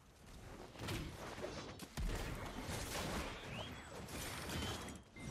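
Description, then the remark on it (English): Loud, dense video game effects from a character class's abilities: the rattling, clanking chain from an anchor runs into heavy explosive blasts and whooshes from the shift R&B ability, with sharp bursts near two and three seconds and a thick rumble throughout. “Like, the chain from the anchor, the explosion from shift R&B. Like, this sound effect, listen to the sound effect, dude.”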